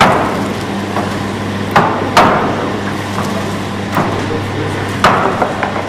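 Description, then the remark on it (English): A steady machine hum runs throughout, broken by four sharp chopping thuds at irregular intervals, as a sizing machine chops stacks of paper into the desired dimensions, the first step in manufacturing water-resistant paper pencils. “In the first step, a sizing machine performs the task of chopping papers into the desired dimension.”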